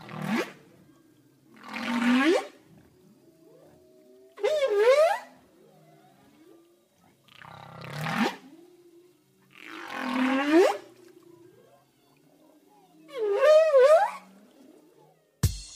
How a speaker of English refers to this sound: It is an animal that lives in the ocean, though. Any idea what it is? Who's talking? I'll tell you. That is the sound of a whale. Whales make that sound.